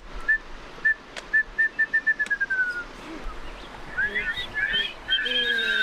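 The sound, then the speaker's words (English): A former biology teacher whistles an imitation of a wrentit's call to teach it to children, a run of short notes that quicken into a falling trill, followed by several more whistled attempts over faint outdoor background noise. “He warms the kids up, teaching them the bird call for the wren tit.”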